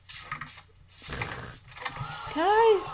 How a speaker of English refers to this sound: Oh, I see the door shutting.